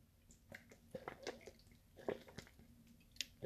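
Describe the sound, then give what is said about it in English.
Quiet sipping of Smartwater from a bottle: a few wet slurps, mouth clicks and swallows spread irregularly over a few seconds, with no talking. “Just need to take a sip of the smart water.”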